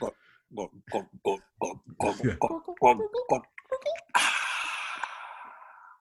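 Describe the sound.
A voice imitates someone gulping down a drink of whiskey in a Daffy Duck style: a quick, rhythmic run of about ten throaty gulps, followed by a long, breathy, satisfied exhale.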